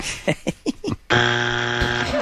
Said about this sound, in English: You're late on the buzzer.